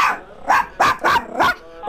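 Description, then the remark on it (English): Chihuahua puppies Fluffy and Penny yap over the phone in a quick, uneven run of five or six high-pitched, sharp barks. They are loud and clear, and no one is talking. “I taught the puppies how to understand English.”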